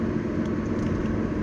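Steady, continuous road rumble fills the background, a broad low hum of light car traffic with no distinct pass-by, heard from a moving vehicle heading towards Stantonbury and Oak Ridge Park, with one car 100 metres behind, another 100 metres ahead, and more oncoming.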